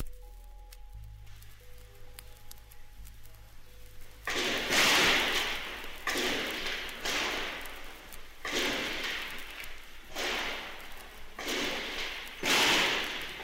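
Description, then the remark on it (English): Gunshots ring out in the PBS station offices during an attack on the studios, a string of loud, sharp bangs at irregular intervals with echoing tails, following a few seconds of quiet electrical hum. “It's a few minutes long, and it's just the sound of gunfire in the station offices.”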